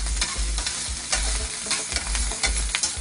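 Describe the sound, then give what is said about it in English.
Food with a little sauce sizzles and crackles steadily in hot oil in a pan, with scattered sharp pops and a low scraping stir of a utensil against the pan in uneven strokes. No one speaks. “It's gonna pop and splash because oil and water don't mix.”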